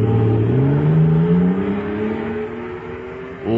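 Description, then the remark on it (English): The powerful engine of an atomic fire-control jet car, filled with super fuel, roars loudly, its pitch climbing steadily as it revs up and surges away, holding a strong whining drone before another rev kicks in at the end. “Listen to that fire control jet car go now.”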